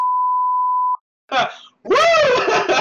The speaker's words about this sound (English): I'll be fair, I'm actually gonna put a comical beep in like in the middle. And then I'll be like, whoops, yep, almost mentioned.